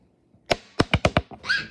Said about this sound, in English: He dropped the dice. Can we find it? Is it by your feet?